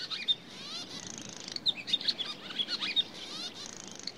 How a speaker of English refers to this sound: For thousands of years, they migrate up to this farm, this tiny spot on the planet, and they fly over the fields, eating insects and feeding their young. And when I was growing up, there would be like dozens of pairs of swallows.